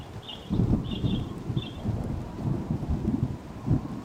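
Rain falls steadily while deep thunder rolls and rumbles underneath in uneven surges. A few short high chirps come early on, and no one speaks.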